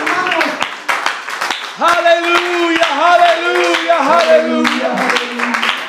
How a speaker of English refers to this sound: Let's clap our hands and worship the Lord here today.